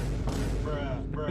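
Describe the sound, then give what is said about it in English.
Doors being shut, heard as a few heavy, booming thuds in quick succession over about a second, with voices murmuring underneath. “Do you have to shut all those doors right now?”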